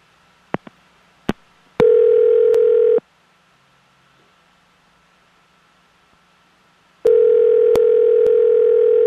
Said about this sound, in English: I'm going to dial the phone number right now and hopefully super hot guy answers. Yeah. Here we go.